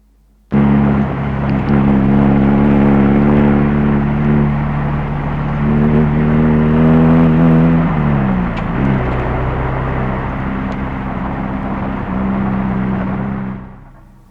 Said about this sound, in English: TR3 driving past fast, it looks like. Right. Or TR3 pass. It was a TR3 car, presumably, isn't it?